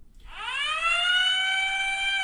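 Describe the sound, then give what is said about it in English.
An alarm horn sound effect from a phone app swoops upward in pitch, then holds a loud, steady, buzzy tone rich in harmonics for about two seconds, with no voices over it. “This is like the horn they played to round up the Jews or something?”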